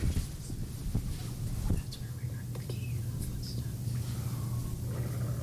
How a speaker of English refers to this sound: You can hear, I heard a whisper and then a growl. Yeah, I think I heard something like that, but I hear the growl very clear.